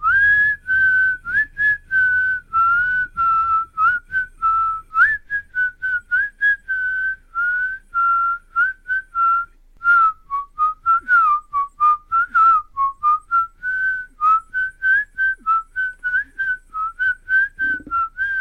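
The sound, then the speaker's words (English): A clear whistled melody, the iconic whistle tune known from the film Kill Bill, plays alone for the whole stretch, its pure tone gliding between notes in a steady rhythm of short and sustained phrases, with faint low rumble beneath. “And they had like L Driver, like the iconic whistling and whatnot.”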